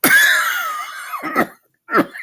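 A loud coughing fit from someone who is still sick: a long, strained, raspy cough with a wavering voiced tone, then two shorter harsh coughs after a brief pause. No talking.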